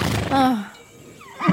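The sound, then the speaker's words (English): A horse named Kinship gives a short whinny with a wavering, descending pitch, followed by a softer snort or nicker at the end. “Kinship's coming to say hi.”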